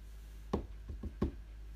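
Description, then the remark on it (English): Four knocks on a door in an uneven rhythm: a firm rap, two softer quick ones, then another firm rap, with no talking. “That's when I heard a knock at the door.”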